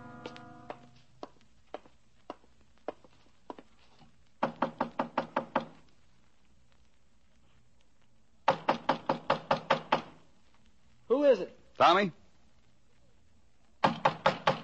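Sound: knocking on a door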